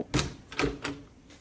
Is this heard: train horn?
no